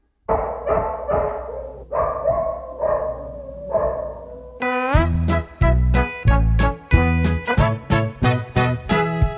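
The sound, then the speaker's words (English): A dog barks loudly about six times in a steady, evenly spaced series, before bright, bouncy music with a strong beat takes over for the rest. “is my dog Bingo. I got him from my friend the farmer.”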